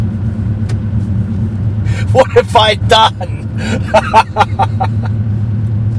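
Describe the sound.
A steady, deep engine rumble from inside the cab of a big diesel truck, low and constant, while a man speaks a short phrase over it midway.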